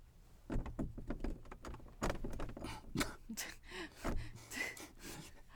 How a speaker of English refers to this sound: I'm going to open the door.